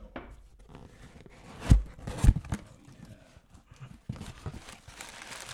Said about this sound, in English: We're doing a live unboxing. Yeah. Bring it close to the mic. You got to hear that box open. Yeah, you got to hear this.